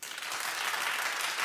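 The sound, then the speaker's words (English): A crowd breaks into steady applause, many hands clapping together in a dense, continuous patter that holds at an even level throughout, with no voices standing out. “All right, clap if you think she should suffer.”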